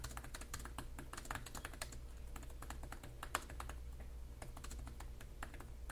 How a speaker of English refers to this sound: Also, here is typing on the keyboard.